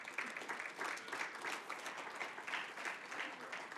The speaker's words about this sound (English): So I could be in Canton, Ohio, on a night like this, and tell you to your face, heaven is real, and Jesus is the way. So I'm asking you, let's clap for that.